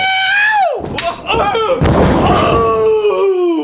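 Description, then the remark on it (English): A door creaks with a long, falling, squeaky whine, followed by a couple of loud thuds like it bumping or slamming, then more creaking as it swings again. “That sounds like a door.”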